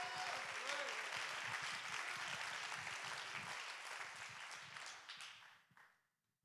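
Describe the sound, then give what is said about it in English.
A church audience claps hands in praise to God in a dense, sustained burst of applause with a few voices mixed in, holding steady for several seconds before tapering off and fading out. “Somebody clap your hands and give the King of Kings and the Lord of Lords the praise.”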